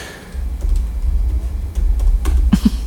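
A few scattered computer keyboard clicks tap out irregularly over a steady low rumble, with a slightly louder cluster of keystrokes near the end.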